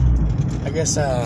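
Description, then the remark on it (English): A loud, steady car engine drones with a deep low rumble while driving, continuous under a man's voice speaking. “I don't know if you can hear me talking because my car's louder than shit, but I thought I'd get an intro in before we got there.”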